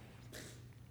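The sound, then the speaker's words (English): A single brief sneeze from an audience member rings out faintly, a short breathy burst over a steady low hum. “Bless you.”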